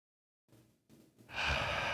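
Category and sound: human body sound, slow deep breathing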